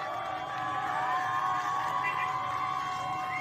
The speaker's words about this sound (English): People are cheering, and they're saying death to dictator, and there's a guy, like, look at this, with American flag. And when people see it, they cheer. When the people see the American flag in Iran, they cheer.